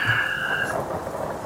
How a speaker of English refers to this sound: So they guide you into these woods, and they have kind of they've got a camp, and they've got a number of tarps set up between the trees high up. To kind of catch the rain, and it is running off, so there's dry areas all about that they can.